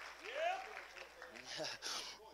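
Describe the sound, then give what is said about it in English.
An audience claps their hands unto the Lord in praise, steadily, a dense wash of many hands that holds for a couple of seconds, with voices calling out over the applause. “clap your hands if you believe that, if it was God who did it. Can you clap your hands unto the Lord?”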